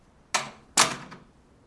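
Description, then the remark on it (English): A door being closed, heard as two quick, sharp clunks about half a second apart, each trailing off briefly, clear with no voices. “Should I close the door first? Of course you should.”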